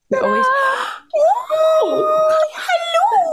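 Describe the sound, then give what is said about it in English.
A dog whines and howls in long, high, wavering cries, rising and falling in pitch over a few seconds with barely a pause between them. “She has a dog too.”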